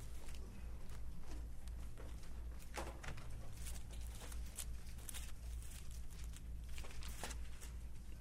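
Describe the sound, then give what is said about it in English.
Many Bible pages rustle and flip at once as a church audience turns to Acts chapter 7, a steady patter of short papery swishes and crackles layered over a low hum, with no one speaking. “You tell them people turning, you hear pages turning.”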